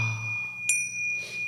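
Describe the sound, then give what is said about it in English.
A bright metallic Tibetan chime rings with a sustained, shimmering tone, struck once more midway so a sharp ping blooms over the lingering resonance. It is clear, with no voices. “I don't want to stereotype this dress movement because I know it's way more than just listening to a Tibetan chime.”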